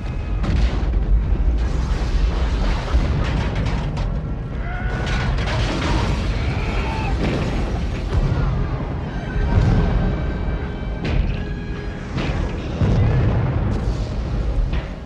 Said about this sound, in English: A pyrotechnician can shape an explosion so it blossoms like a flower, or erupts like a hot spring geyser.